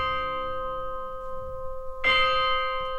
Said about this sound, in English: And the movement is set at midnight in a graveyard. So we've got all these spooky sounds that the composer is incorporating. We've got bells tolling.